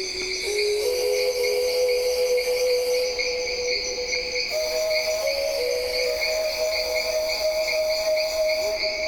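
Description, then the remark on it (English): Amazon rainforest insect ambience recorded at Kilometer 41, a research station north of Manaus: layered, steady high-pitched cricket and cicada drones hum continuously, with a few sustained whistling tones stepping upward in pitch midway, all at a constant, full loudness with no voices. “it begins with sounds that I recorded in the Amazon at a place called Kilometer 41, which is a research station north of Manaus, which is kind of midway in the Amazon.”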